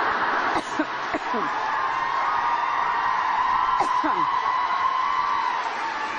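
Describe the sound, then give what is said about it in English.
A campus audience cheers and applauds a woman giving a speech, reacting as she pops a lozenge in her mouth, in a steady, loud roar that never lets up, with a few sharp whoops and shouts rising above the clapping. “I swear this woman could break wind, and this audience would applaud.”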